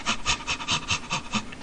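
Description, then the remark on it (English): A person pants rapidly and rhythmically, about eight quick breathy huffs in a steady pattern, fairly loud, with no talking. “Would you be panting at the single?”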